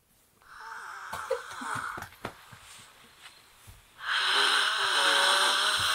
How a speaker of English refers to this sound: And then this was what I would describe as the world's creepiest snore ever. And this is nothing. This is like, this is while I'm still awake enough to record it. So this is early on in the night.